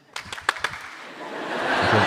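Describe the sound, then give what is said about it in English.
An audience claps in unison as a hand for Matthew Perry, four sharp claps in a quick, even rhythm, then breaks into loud, swelling applause and cheering that keeps building to the end. “But before you do that, I'm going to ask if you're going to give a hand to Matthew Perry, it has to be a series of claps delivered like this.”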